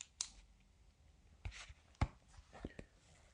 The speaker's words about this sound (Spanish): Y aquí estoy mirando mi libro de cuero negro, que nos queda 794 días. Y ahora voy a usar un boli de tinta negra para cruzar el día.